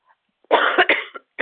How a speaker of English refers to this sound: Sorry, that was a nasty sniffle I just did in your ear. I apologize.